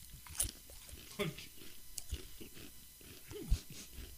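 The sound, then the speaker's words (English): Crisp, crackly crunches of someone biting and chewing foie gras flavored potato chips from Spain, several irregular bursts with sharp high-pitched snaps, fairly loud with no talking. “Okay, foie gras from Spain. Foie gras flavored chips.”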